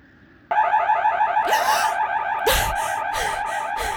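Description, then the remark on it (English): A house alarm suddenly blares out after a moment of quiet, a loud, warbling electronic wail that keeps going without pause, with harsh bursts of noise breaking over it. “The alarm screams out again.”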